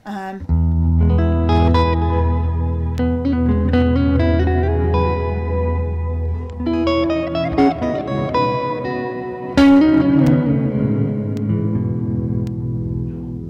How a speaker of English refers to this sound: that has been fun to pair with my Voodoo Lab tremolo, and I put the rate pretty low on that, and my Keeley, their Mag Echo, which is like a modulation delay. So like all three of those together.